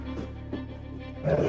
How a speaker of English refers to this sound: Dude, is Zool in your house? What is that? What is happening? Yep. Gozer. Dog wrestling match. Dudley, go away.